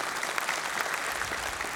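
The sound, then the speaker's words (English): Steady audience applause for a woman who used to serve at Welcome Center B. It is a dense patter of many hands clapping at an even, moderate loudness throughout, with no voices standing out above it. “Yeah, you can applaud her.”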